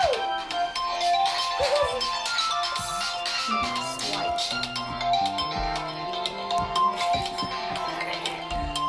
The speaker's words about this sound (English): Well, we just have a little intermission right now. Someone didn't cut their phone off. So we're just going to, okay. Yeah. Okay. So we got that out the way. She forgot to cut her ringer off, but it's okay.